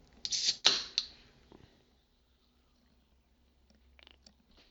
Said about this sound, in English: Now, excuse me while I get a sip off of my Dr. Pepper here.